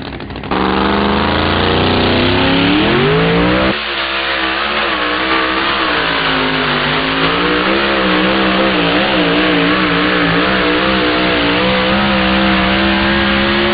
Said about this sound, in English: You could really hear that engine tug down when those tires hooked up. That big Minor Brothers Hemi had all it could handle there. Wow, what a hook.